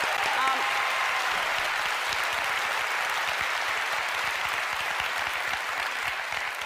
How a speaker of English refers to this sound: I wish they were clapping for me. No, they were clapping for that bullshit.